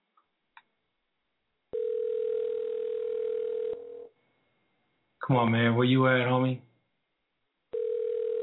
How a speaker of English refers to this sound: This is you ringing. Answer the phone.